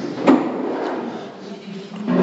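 A hard wooden clunk rings out near the start, followed by shuffling and a second knock as a stack of chairs is carried and set down, with faint voices murmuring in the background.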